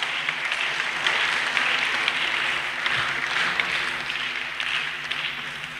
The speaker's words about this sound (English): Put your hands together and you may be seated. We want to thank the Lord for three powerful days. Amen.